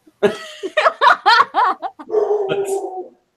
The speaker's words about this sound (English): The louder barking behind me that you can hear. No, I'm way louder than the dog.